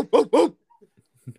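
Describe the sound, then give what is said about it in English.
A bulldog barks twice in quick succession, two loud, gruff, throaty barks, followed by a few faint low murmurs and quiet sounds. “wouldn't you like to hear that bulldog bark right now on the podcast?”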